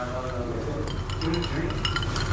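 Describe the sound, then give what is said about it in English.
Several glasses clink together in a quick, bright flurry of a toast, with overlapping taps over a murmur of voices in the background. “Ladies and gentlemen, faders, hi, kanpai. Cheers. Cheers. Cheers. Cheers, guys.”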